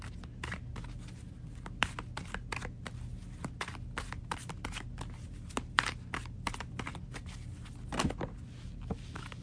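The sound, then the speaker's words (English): A deck of tarot cards being shuffled for a reading on water signs' money and career: a steady run of soft, crisp flicks and taps, irregular and fairly quiet, over a low background hum, with no one speaking. “All right, so let's get some cards here.”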